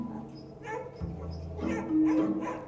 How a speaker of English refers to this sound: And these dogs are excited.